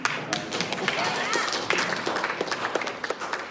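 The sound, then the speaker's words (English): An audience claps steadily after a sermon, a dense patter of many hands at an even loudness for a few seconds, with faint murmuring voices mixed underneath. “Well, that's really good, man, because now I have to say, don't just clap, you have to actually do it.”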